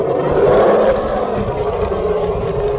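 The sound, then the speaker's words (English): A deep, rumbling dragon roar blasts loud as the dragon roars in a character's face, holding steady for about three seconds with a gritty, growling texture and no voices over it. “but this dragon, he's going to turn towards you, Mal, and he's going to just roar in your face.”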